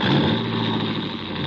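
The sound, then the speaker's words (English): A coupe's engine roars, a loud, steady revving rumble with a slight surge as the car pulls away, no voices heard. “she was behind the wheel of my coupe”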